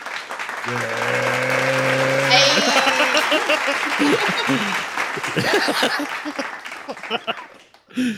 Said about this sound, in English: Round of applause for the first sponsorship of Breaking Late Podcast. Do it.